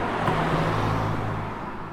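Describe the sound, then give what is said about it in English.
A car passes by on a street, going the wrong way, its engine hum and tyre noise steady before easing off slightly at the end, with no one speaking. “No, that car's going the wrong way.”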